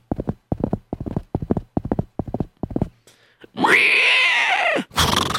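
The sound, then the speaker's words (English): Steady pairs of hoofbeats from a bunch of horses clip-clop quickly past, then a loud, drawn-out whinny-like cry rises and cuts off, followed by a short burst of noise. “And suddenly, while he was sitting there, he heard a bunch of horses coming by.”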